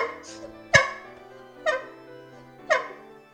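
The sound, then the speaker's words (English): A goose honks three times, each call a loud, harsh, nasal blast spaced roughly a second apart, with softer faint sounds in between and no talking. “It's that goddamn goose.”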